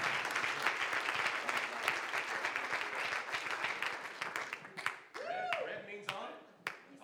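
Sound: audience applause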